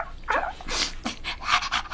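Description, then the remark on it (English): A white dog named Silver Dog proudly sniffs and pants, several quick breathy bursts of air coming in an uneven rhythm over a couple of seconds, with no voices. “Silver Dog put his nose in the air, proudly sniffed and wagged his tail.”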